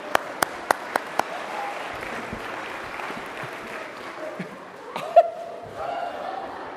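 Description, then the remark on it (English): An audience breaks into a round of applause for a man on stage, a few sharp separate claps at the start giving way to a steady, dense wash of clapping, with faint chuckles and murmurs mixed in. “Right, give him a round of applause.”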